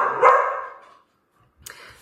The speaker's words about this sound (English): Sorry for that interruption. My dog started barking. That's Chance, by the way. he tries his best to stay quiet, but sometimes it's hard.